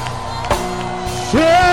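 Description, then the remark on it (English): An audience shouts and cheers, giving the Lord a shout, over a steady bed of sustained organ-like tones, with a loud rising whoop near the end lifting above the noisy crowd. “Give the Lord a shout.”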